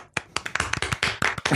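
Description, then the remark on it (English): A single person claps their hands about nine times in quick, fairly steady succession, applauding software developers. The claps are moderately loud, with no voices. “So I'm just going to say, how about a round of applause for Plex developers?”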